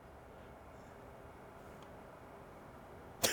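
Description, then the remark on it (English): A steady, low outdoor rumble fills the background, then right at the end a field tip arrow shot from a traditional bow slams into a double-wall stainless steel Black Rifle Coffee French press with a sudden, sharp, loud metallic hit. “Okay, so we just hit the double wall stainless steel French press with my trad bow field tip arrow.”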